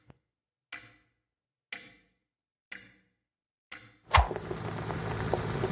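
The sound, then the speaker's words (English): A clock in a lobby ticks four times, slow and steady about a second apart, then a sudden loud burst cuts in and gives way to continuous dense noise. “When did we put that clock in the lobby?”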